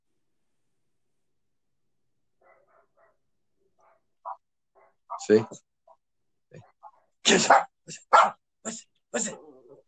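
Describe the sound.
Faint, tinny recorded dog barks play from an Alexa smart speaker asked to make dog sounds, then a real dog answers with a burst of loud, sharp barks in quick succession; a person briefly speaks.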